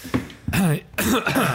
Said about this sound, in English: You just like spat all over me. Bit of a cough. Yeah, you cough. You're going to cough on my arm.